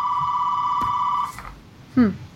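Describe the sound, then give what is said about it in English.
A telephone rings with an incoming spam call, a steady, high electronic tone held for just over a second, fairly loud, then cuts off with a click before a brief voice sound follows. “is it the IRS calling me again? Let's see. Nope, this is a different spammer.”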